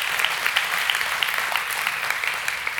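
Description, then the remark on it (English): A crowd claps steadily, a dense wash of overlapping hand claps with no clear rhythm, holding at an even, moderately loud level throughout with no talking. “You clapped.”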